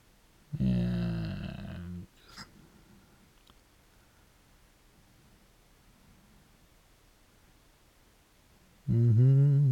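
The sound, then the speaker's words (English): A person hums in low, steady tones: one loud burst of about a second and a half near the start, then quiet background, then another wavering hum at the very end. “I'm humming again.”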